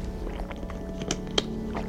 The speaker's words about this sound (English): Oh, I hate the fact that I can hear him swallowing water. Ew.